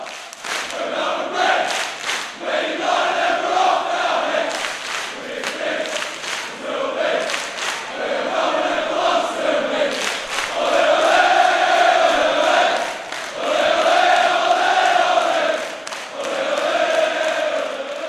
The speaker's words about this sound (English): the sense of anxiety washed away and was replaced with excitement and solidarity as fans sung in unison with gusto.